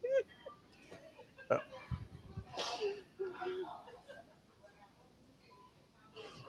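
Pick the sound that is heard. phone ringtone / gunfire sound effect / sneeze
sneeze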